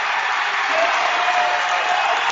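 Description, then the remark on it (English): A steady roar of a high school basketball crowd, including the Rowdies, after a dunk in the third quarter of a Pius versus Kearney High game that makes the score 40-38. It is loud and constant, with cheering and clapping blended into a dense, unbroken wash of sound. “Seth Stroh gets the crowd into it.”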